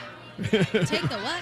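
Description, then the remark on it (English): A crowd at a live performance chattering, with several voices overlapping in a lively, rising-and-falling murmur and a hint of chuckling, starting after a brief quiet moment. “Oh, the crowd is getting very, very...”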